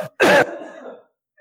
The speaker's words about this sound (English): and hold on a second. I've got to clear my throat. I did.